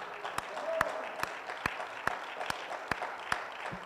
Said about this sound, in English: Well, I'm going to hand clap on that one.